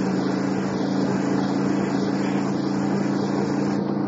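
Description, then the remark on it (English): A car engine drones steadily, a continuous low hum with broad road-like rumble and no talking, holding an even level throughout, as a car speeds up a little on a road with very light traffic. “The car behind me. Speed up a little.”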